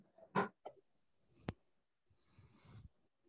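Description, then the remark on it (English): A metal fork handled right up close, quiet but crisp: a few sharp clicks and taps, a brief thin ringing, then a soft scraping rustle, with no one talking. “Next time I'll do it really close to the microphone so you can hear the metal.”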